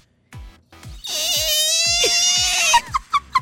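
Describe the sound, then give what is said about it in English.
A voice imitates a ground firework: a couple of soft pops, then a loud, high, wavering shriek held for nearly two seconds, ending in a few short, sharp bursts. “I don't do well with the ones that stand on the ground. And then all of a sudden they go...”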